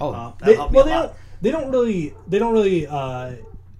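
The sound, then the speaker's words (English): The speaker's own dog barks in a few drawn-out, whiny bursts, fairly loud, each call rising and falling in pitch before a short pause. “All our listeners now know I have a dog.”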